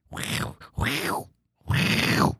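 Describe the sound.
A person vocally imitates an angry wolverine with three harsh, raspy growling bursts, the last one longest, loud and rough with a gritty, throaty texture and short pauses between.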